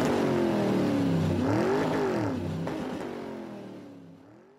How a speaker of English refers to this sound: Okay, we're out of here. On a motorcycle.